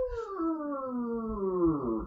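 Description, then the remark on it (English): A voice imitates a creaking door with one drawn-out, moaning tone that slowly glides downward in pitch over about two seconds, steady in loudness, with a rough, creaky edge. “makes a door noise.”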